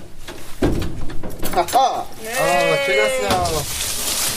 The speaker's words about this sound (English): And he also had a key to open the museum door, which he wasn't sure would work because it had been a month since he last used it.